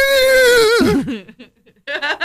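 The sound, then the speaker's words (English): On a crowded train, a person does a loud horse whinny impression: a high, sustained voiced cry that drops into a shaky, wavering quaver, followed by a breathy pause and a short second burst. “It sounds like a horse.”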